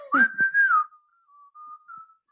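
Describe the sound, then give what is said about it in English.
Someone whistles a short melody like the cartoon whistling rooster from Robin Hood: a loud, gliding opening note, then a few softer held notes that fade away. No one speaks. “Unless you're fancying the whistling rooster, I want no part of it.”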